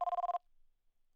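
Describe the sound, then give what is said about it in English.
A telephone rings in one short, loud burst of rapid electronic trilling, cutting off abruptly into near silence. No one speaks. “What's that noise? It's the phone.”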